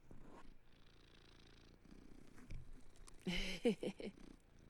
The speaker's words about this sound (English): Listen to how good he is. Let's see if he can purr. Can you hear that? He's just a purr machine.